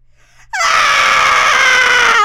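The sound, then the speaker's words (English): A voice imitates a horror-movie scream: a loud, sustained, high-pitched shriek that bursts in after a brief quiet breath and holds steady for nearly two seconds with a slight waver. “That was horror, almost like horror scary. Movie scream.”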